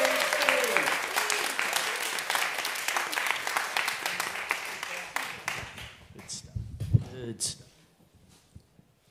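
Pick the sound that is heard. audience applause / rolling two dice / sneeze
audience applause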